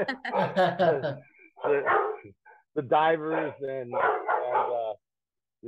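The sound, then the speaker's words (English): A dog barks in several loud bursts over a few seconds, overlapping with a person speaking, with brief pauses between the barks. “Oh, here goes the dog.”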